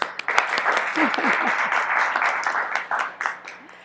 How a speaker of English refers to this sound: you're going to get applause too, a former principal dancer with the Kansas City Ballet.